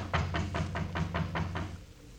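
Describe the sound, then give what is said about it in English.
A quick, even series of about eight light, soft knocks on a door over a low background hum, then quiet. “I reckon it won't hurt nothing to tap on the door sort of gentle.”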